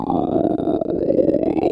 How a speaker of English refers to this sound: That appears to be a stomach growling noise.